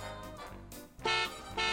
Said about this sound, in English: It's a car horn, but where have I heard that sound before? It sounds kind of like that.